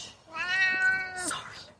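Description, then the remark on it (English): A single drawn-out meow from an old cat at a table, clear, with a rising then falling tone lasting about a second, followed by a faint breathy sound. “We got a cat at the table here.”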